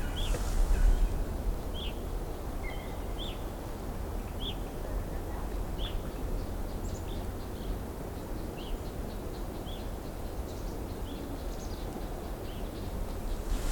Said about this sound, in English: That was a lone bird flying over, very high up. The common red poll is a small brown and white finch with a red patch on the crown.